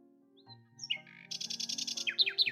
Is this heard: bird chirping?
yes